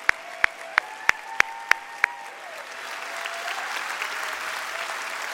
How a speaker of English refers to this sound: All the servicemen and women, if you served in the past, if you currently are serving, as well as those of you online, if you're somewhere safe that you can stand up, please stand to your feet. We can clap it up, clap it up.